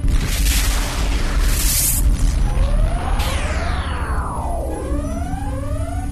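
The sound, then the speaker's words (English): A massive methane-fueled explosion of a bomb released by the spaceship Edsel, destroying an EMP blaster, roars with a heavy, sustained low rumble, bright crackling bursts early on, then eerie sweeping tones gliding up and down as the blast rolls on. “Methane-fueled explosion.”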